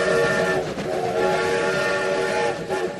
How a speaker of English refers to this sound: let's get some fresh air and hop on aboard the TJA Express. That's right, the Orange Track, the world's only steam-powered monorail